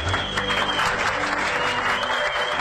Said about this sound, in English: Dozens of people jump out of the aisles, and they're clapping, and someone puts a microphone in the girl's face and asks her name.